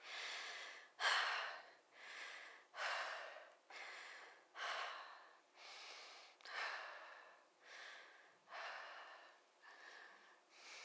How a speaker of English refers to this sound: Let's do a breathing exercise